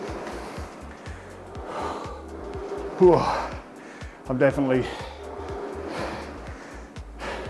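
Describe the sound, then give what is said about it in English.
Heavy, effortful panting breaths of a man recovering between rowing intervals, with two loud gasping bursts at the mic, mixed in with him speaking between breaths. “feeling heart rate is up, breathing's up.”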